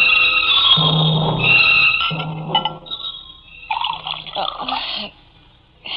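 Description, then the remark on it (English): Liquid pours into a glass as a man pours himself a drink, a steady splashing stream, then a second shorter pour, followed by lighter glassy clinks and handling sounds. “I'm just pouring myself a drink.”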